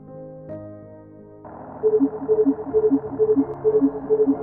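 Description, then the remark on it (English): Ambulance dispatch radio alert tones sound out in a snowy, near-empty city, a rapid two-pitch electronic beeping that alternates high and low in a steady repeating pattern after a brief lead-in of steady humming tones, loud. “Our tones went off. We were snagged for a trip.”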